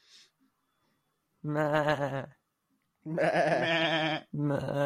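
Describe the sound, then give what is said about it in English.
People imitate sheep with three loud, drawn-out, wavering bleats, the last one cut short, separated by brief silences. “We sound like sheep, yeah?”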